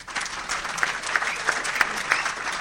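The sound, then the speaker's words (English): An audience at a summit applauds to show they got something out of the cash flow game. It is a dense wash of many hands clapping at an even level for a few seconds, with a few sharper individual claps popping out above the crowd. “So by show of applause, whether it was your first time or whether you played hundreds of times, how many of you got something out of the cash flow game”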